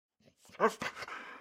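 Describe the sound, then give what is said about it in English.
A puppy running away from a camp lets out a brief whimpery yip, then a few quick, breathy pants trail off into airy hiss; fairly quiet, and nobody talks. “Oh, why is that puppy running away from camp?”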